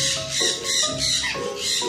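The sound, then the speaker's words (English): Macaws, cockatoos and parrots squawk in a loud, harsh chorus at Parrot Paradise in Jurong Bird Park in the early morning before 9 a.m., several birds calling over one another in overlapping bursts that rise and fall continuously, raucous with no talking. “You're hearing the birds of Parrot Paradise.”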